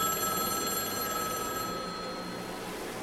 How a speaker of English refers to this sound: I sprinted out of the room towards the other side of the suite, but I stopped in my tracks. It was the phone on my side ringing this time.